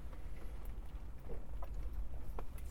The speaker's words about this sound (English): Fucking raining. It is raining heavily.